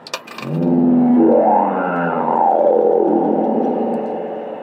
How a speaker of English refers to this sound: Okay, that roar comes from the head of a saber-toothed cat. It's worked the same way for decades. Drop a penny down its throat, get that iconic growl in return.